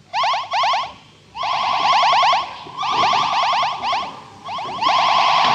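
Loud, rapid electronic beeping in repeated warbling bursts, a shrill sci-fi sound effect of giant ants running around outside a ship in a barren landscape, pulsing on and off with brief gaps, harsh, with no talking.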